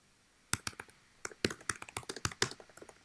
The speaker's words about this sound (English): I wonder if people listening to this can hear me typing with two fingers.